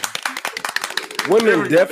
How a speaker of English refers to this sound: I need a clap. I feel like we have a clap app. So clap for that. Everybody clap.